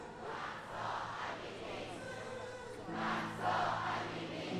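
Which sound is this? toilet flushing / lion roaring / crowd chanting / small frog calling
crowd chanting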